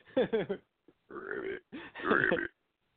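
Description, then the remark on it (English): A voice imitates a frog croak with low, throaty, burp-like sounds: two quick croaks, a pause, then two longer drawn-out gurgling croaks, fairly loud and with no words spoken. “Like, you were making weird frog noises before.”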